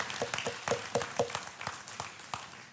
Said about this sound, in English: Let's give God a hand clap.